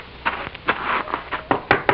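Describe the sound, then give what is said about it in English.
Someone raps on the wooden door of Senor Riggs' house, a handful of solid knocks in an uneven rhythm, clear, with a quick pair of sharper knocks near the end and no voices. “I will go to the door.”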